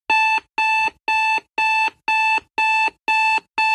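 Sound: alarm clock ringing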